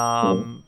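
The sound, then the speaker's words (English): One bright ding from a small bellhop bell used as a bathroom call bell, a single metallic strike that rings briefly and fades within a second, with no voices. “This is just this little bellhop bell here.”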